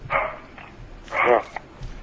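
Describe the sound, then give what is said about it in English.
A dog in a house barks twice, two short sharp barks about a second apart, moderately loud, with a faint murmur of voices in the background. “The slightest noise makes this dog think that the house is being invaded.”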